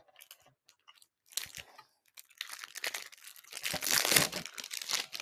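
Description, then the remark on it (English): The first trading card package, holding Lumini and V cards, is torn open, with sporadic crinkles giving way to a louder, sustained stretch of crackling and ripping foil that peaks near the end. Nobody speaks. “And I'm going to open this first package.”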